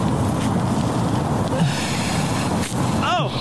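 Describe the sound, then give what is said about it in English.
Wet, rough tearing as an animal rips meat from a fox carcass, a dense, steady ragged noise throughout, with a brief snort-like sound and a short rising-falling tone near the end. “Oh, you can hear it tearing. Look at that meat.”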